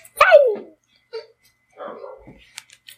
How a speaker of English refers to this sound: Give a shout out to the barking dogs in the background.